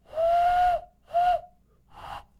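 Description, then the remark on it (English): A hand whistle blown through cupped hands sounds three times: two breathy, hollow hoots with a steady pitch, the first longer, then a quieter burst that is mostly rushing air. No talking. “Yeah, so for the listener, it's just my hands making a whistle noise, which people can like play.”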